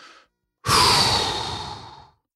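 A big, deep breath: a brief faint inhale, a short pause, then a long, loud, breathy exhale lasting about a second and a half that slowly fades out.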